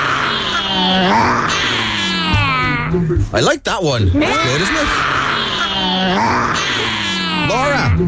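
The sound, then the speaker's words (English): Several children roar in imitation of a lion, loud overlapping growling cries with wavering pitch that break briefly in the middle, while an adult voice speaks over them. “That's a good lion impression.”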